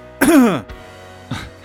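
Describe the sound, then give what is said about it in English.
A loud, close-up cough right into the microphone: a harsh, throaty burst lasting about half a second, followed a moment later by a second, shorter cough. “thanks for coughing right into the microphone.”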